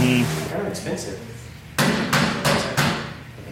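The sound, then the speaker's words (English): Four sharp, loud knocks rap on a door in quick, slightly uneven succession, preceded by a moment of quiet background murmur. “All right, go knock.”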